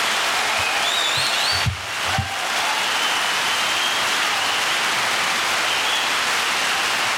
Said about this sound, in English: That clap is a little loud when you're drunk.